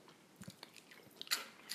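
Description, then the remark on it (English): Someone chewing crunchy dry strawberry-flavored cereal, a handful of irregular crisp, crackling crunches over less than two seconds, fairly quiet, with no talking. “Let me try the strawberry.”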